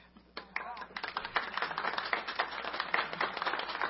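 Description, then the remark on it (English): An audience claps steadily as two people stand up, dense overlapping hand claps forming continuous applause that builds after a brief quiet start, with some voices mixed in underneath. “You don't even know why we're clapping.”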